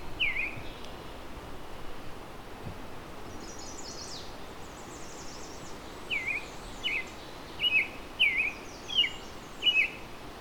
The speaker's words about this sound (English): So as you can hear, there's American robin here.